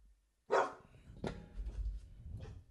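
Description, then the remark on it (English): A dog lets out three sharp barks, spaced unevenly over a couple of seconds, the first loudest, with a low rumbling background between them. “And if my dog's barking, that means take the dog.”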